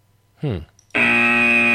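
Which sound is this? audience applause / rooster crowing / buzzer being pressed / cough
buzzer being pressed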